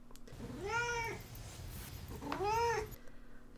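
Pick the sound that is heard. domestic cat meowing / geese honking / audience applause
domestic cat meowing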